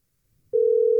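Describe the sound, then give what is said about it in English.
After a moment of quiet rustling, the steady, loud electronic ringing tone of an outgoing FaceTime video call starts and holds one mid-low pitch for about half a second, ending in a sharp click. “I almost FaceTimed.”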